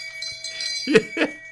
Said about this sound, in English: What's that sound you played for me that one time? The shame, the bell of shame or something like that? Here it comes.